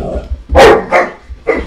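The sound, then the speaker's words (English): A German shepherd barks three times in quick succession, loud, the first bark the strongest, with a short gap before the last one. “That's my dog demonstrating...”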